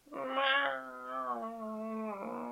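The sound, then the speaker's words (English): A single long, drawn-out cat meow, loud, starting bright and sliding gradually lower in a mournful, wailing tone for over two seconds, with no one talking. “Oh, how are you doing today, Kitty?”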